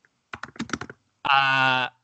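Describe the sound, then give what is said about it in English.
A quick burst of about eight keystrokes on a computer keyboard clatters for under a second, followed by a short, loud, buzzy sustained tone. “I'm typing Law and Order Islanders fan.”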